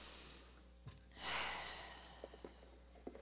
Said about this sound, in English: To taking a deep breath in through your nose and out through your mouth.